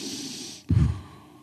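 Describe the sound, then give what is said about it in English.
Deep breathing: a long, airy exhale hiss gives way to a sudden, heavier breath with a low, slightly snorting rush, then fades. No one speaks. “just helped him to breathe and said, "Come on, breathe deeply.”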